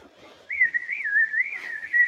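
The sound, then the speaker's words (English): A person whistles a continuous, wavering tune, the pitch gently rising and falling for about a second and a half, with no talking over it. “You do have a whistling talent.”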